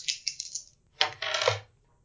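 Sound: dice being rolled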